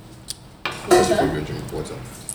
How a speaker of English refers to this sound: stop washing dishes. Like he's such a housewife.